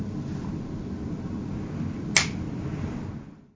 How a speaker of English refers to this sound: And when you feel comfortable, you can open your eyes and snap your fingers.